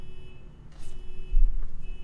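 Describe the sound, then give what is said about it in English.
A faint electronic alarm beeps steadily outside, thin and muffled, with a low rumble of background noise and no one talking. “I don't even want to talk when the alarm's going off because it's so hard to get...”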